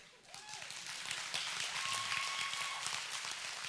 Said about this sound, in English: Y'all clap. Makes me feel good when y'all clap.